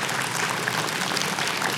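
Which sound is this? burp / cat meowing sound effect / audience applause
audience applause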